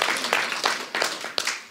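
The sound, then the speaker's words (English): An audience claps for God during a sermon, a dense, steady crackle of many hands with a few sharper bursts rising out of the wash. No one speaks over it. “You can give God a clap for that.”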